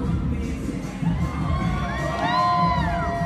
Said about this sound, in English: In turn, Owens thanked all who made the film possible, received thunderous applause before the documentary even started.